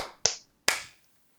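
Two sharp hand claps about half a second apart, made as a sync clap for a recording after a 3, 2, 1 countdown, each a crisp bright crack with a quick ringing decay, followed by silence. No voices.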